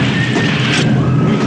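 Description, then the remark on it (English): Loud, dense punches landing in a black-and-white boxing film fight scene in which De Niro is being beaten, heavy smacking impacts blurred together over a constant rough background roar, with no one speaking. “After this punching fiesta, fiasco.”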